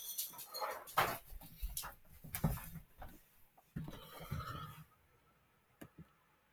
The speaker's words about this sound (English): Sorry, I was giving my dog food.